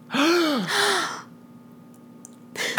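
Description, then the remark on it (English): Several voices gasp together in unison on a count of three, a loud, breathy, partly voiced intake in two quick surges, followed by a brief quiet before another breathy sound begins. “Are we going to gasp or going to?”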